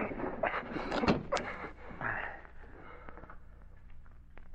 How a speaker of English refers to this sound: Close the door. I'll drag him inside.